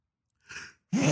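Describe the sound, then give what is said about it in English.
A single loud sneeze: a brief breathy intake of air, a short pause, then a sharp explosive burst with a voiced edge. No one speaks. “Bless you.”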